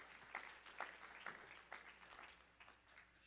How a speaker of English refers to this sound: As Pastor comes to the pulpit, one more time, would you just clap your hands to Jesus? God bless you tonight.